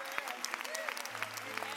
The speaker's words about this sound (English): Stand up and give the Lord praise. Yeah, clap your hands.